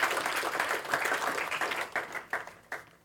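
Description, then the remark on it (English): A crowd at Genesis breaks into a round of applause for its one-year anniversary, a dense wash of many hands clapping at once that thins out toward the end into a few scattered, louder individual claps. “Can we have a round of applause for 1 year, right?”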